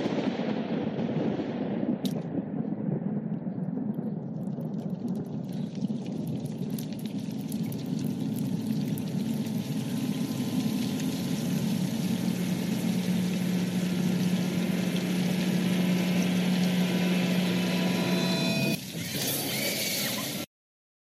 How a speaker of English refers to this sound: He's like, it's just blood sounds. I'm like, well, it's literally raining blood. How much more do you want? He's like, I want more.